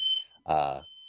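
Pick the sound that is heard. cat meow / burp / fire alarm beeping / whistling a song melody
fire alarm beeping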